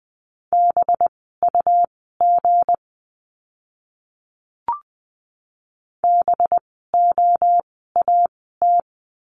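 Morse code at a brisk 20 words per minute, sending practice words for the letter b: a steady mid-pitched tone keyed in crisp short and long beeps, forming clusters separated by pauses, with one soft click in the quiet middle.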